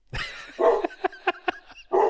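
The dog Kylo barks repeatedly after hearing the word 'Dumble', a run of about six sharp, loud barks in quick succession with no one talking over them.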